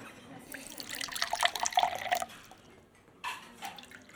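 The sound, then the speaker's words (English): Water pours from a bottle of Fiji bottled water in a gurgling splash lasting about two seconds, followed by a brief second pour after a short pause. No one speaks. “Right, I think the bottle's a little ostentatious, but let's go for it.”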